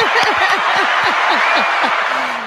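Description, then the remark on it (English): An applause sound effect: a steady wash of loud crowd applause, with bursts of cheering and laughter repeating over it. It holds at an even level and trails off slightly at the end. “Definitely giving you a round of applause.”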